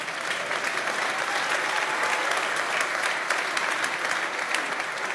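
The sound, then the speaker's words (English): A crowd claps steadily, a dense wash of many hands with no pauses, holding a fairly loud, even level throughout. A few sharper claps stand out from the mass. “If you want to clap, clap well.”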